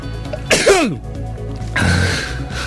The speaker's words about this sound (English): I've got to sneeze.